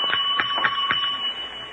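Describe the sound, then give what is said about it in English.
A bell rings with a steady, bright metallic tone, pulsing in four quick strikes before sustaining evenly to the end, moderately loud with no voices. “I'll ring the bell.”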